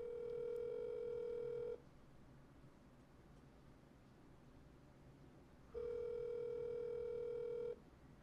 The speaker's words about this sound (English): Do not answer this phone call. He's going to answer.